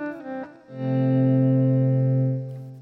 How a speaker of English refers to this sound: he might also be using a volume pedal, and that's the reason that his guitar notes don't have an attack. They kind of sneak in. Each one comes in as this, you know, soft guitar sound with no attack.